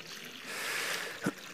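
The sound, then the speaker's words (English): Water is accidentally spilled and splashes in a brief, hissy rush, with a sharper splat toward the end; no one speaks. “Yeah, it's only water.”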